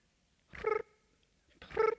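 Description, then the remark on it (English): A person imitates cricket chirping with their voice: two short, moderately loud, tonal squeaks separated by about a second of quiet, each with a bright, slightly nasal pitch. “That's my cricket noise. That's cricket.”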